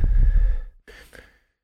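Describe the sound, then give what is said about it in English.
Heavy, close-miked breathing: a loud, rumbling exhale followed by two shorter, breathy puffs, with no talking. “You're breathing heavily into the mic.”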